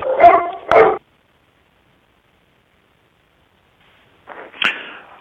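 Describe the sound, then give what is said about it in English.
Two quick, sharp dog barks close together, then a few seconds of silence before a dog's brief whimpering whine. Fairly loud, with no talking. “I'm just going to just get rid of this dog here.”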